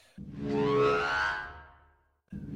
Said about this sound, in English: So let's let's go ahead and blow our bosun's whistle. Not our bosun's whistle. Our black alert. Right. Wait for it. Now.